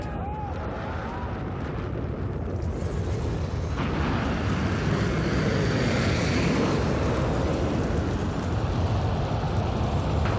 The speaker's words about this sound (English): T-minus 15, 14, 13. T-minus 10, 9, 8, 7, 6, 5, 4. We've gone from the engine start.